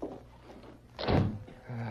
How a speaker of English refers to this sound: I heard the door close. Is that man gone?